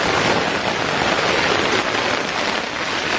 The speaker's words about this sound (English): The tent is just coming in on me. The wind is so bad. I've just been sitting here like this for a while.